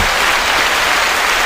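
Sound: crowd applause sound effect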